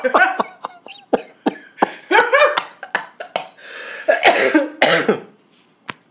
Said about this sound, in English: Honestly, our listeners have been listening to you cough and half die all year. All year.